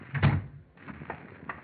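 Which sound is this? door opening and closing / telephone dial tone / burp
door opening and closing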